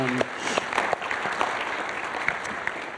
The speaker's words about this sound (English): If you want to just give them another round of applause, we're so thankful for you guys.